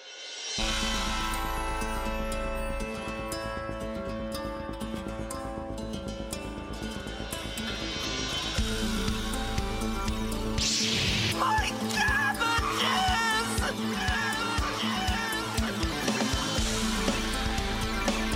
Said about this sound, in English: Theme song time.